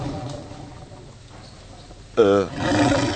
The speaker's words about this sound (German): Hast du einen Tiger in der Küche? Nee, mein Magen, ich hab Hunger.